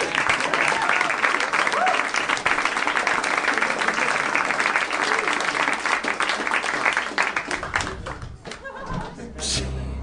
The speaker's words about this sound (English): Quickly, before the applause ends.